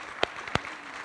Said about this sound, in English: Well, thank you, worship team. Can we just give another round of applause for such a great worship service? Yes.